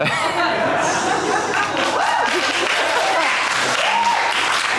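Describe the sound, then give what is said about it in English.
A crowd cheers and applauds steadily, a dense wash of clapping with whoops and excited voices rising through it, loud and sustained for several seconds. “I've never had a cheer for being fat before.”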